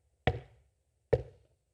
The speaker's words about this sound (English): and then suddenly she heard a knock. Softly at first, and it grew louder.